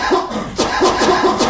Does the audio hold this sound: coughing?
yes